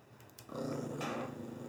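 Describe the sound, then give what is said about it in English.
A dog lets out a low, steady growl that starts abruptly after a few faint ticks and rumbles on continuously, fairly loud, with no talking over it. “Dude, not even your dog likes it.”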